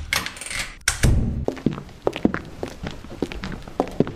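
A door opens with a brief rustle and a solid thunk, followed by a run of uneven, moderately loud footsteps tapping away. No one speaks.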